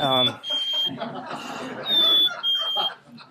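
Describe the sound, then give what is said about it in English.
A thin, high whistled imitation of the Carolina A song type of a southern bird species repeats a simple two-note high-low phrase several times, with chatter and crowd noise running underneath. “It's a high-low, high-low, so something like”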